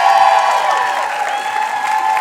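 An audience applauds Nagin Farsad steadily, a dense, continuous wash of clapping at an even, loud level with faint cheering mixed in, lasting the whole couple of seconds without pause.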